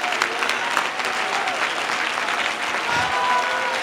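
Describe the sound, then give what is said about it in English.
Sustained audience applause, a dense, steady wash of many hands clapping at an even loudness for several seconds, with faint crowd noise mixed in. “Oh, clap your hands some more.”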